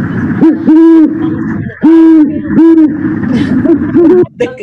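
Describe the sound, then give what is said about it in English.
A male great horned owl gives deep, resonant territorial hoots, three or four low calls in a steady, measured rhythm, loud against a quiet background. “So, So a male is going to be calling, territorial setting, kind of hooting.”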